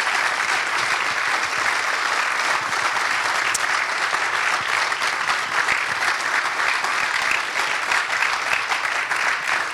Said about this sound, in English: would you join me in giving him a round of applause for answering them?